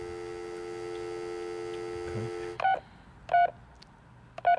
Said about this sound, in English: I just hit fucking speed dial.